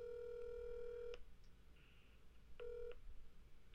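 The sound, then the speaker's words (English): A phone ringback tone on an outgoing call to the owner of Funky Blue Shack: two steady electronic rings, one long and then a shorter one after a pause, holding a flat pitch over a low background hum. “Let's see if he answers.”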